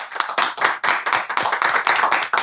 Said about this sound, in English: Let's give him a round of applause, y'all.